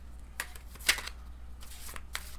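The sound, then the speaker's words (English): Crisp riffling of a tarot card deck being shuffled, a series of quick papery flutters and snaps with one sharper slap near the middle, no voices. “Shuffle this until you feel good about it.”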